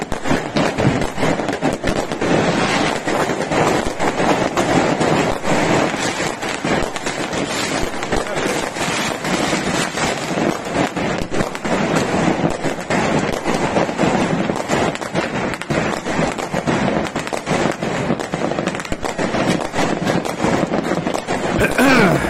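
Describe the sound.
A continuous barrage of New Year's Eve fireworks explosions across a city in Italy, set off despite the mayor's ban. Countless overlapping bangs and crackles, loud and relentless throughout, with faint voices mixed into the din.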